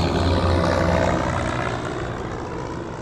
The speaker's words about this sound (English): Danforth guided the plane back towards the pass and brought it down on a snowfield devoid of obstacles